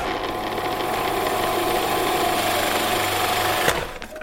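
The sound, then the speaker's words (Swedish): An electric mixer mixing pasta dough of flour, three egg yolks and a whole egg whirs steadily with a dense, buzzing motor drone and faint rattling, holding an even loudness for several seconds before a sharp click as it shuts off and fades. “Men du, nu har jag hällt i 3 styckna äggulor och ett helt ägg i den här mjölen. Och nu sätter vi på mixen.”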